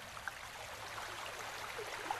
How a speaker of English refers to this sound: It's a stream right there in the middle of the wasteland, right before your eyes.